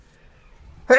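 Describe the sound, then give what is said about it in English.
A single sneeze erupts abruptly after near silence, a loud, harsh, voiced burst with a breathy rasp, cut off right as it peaks. “Sorry about that. Bless you.”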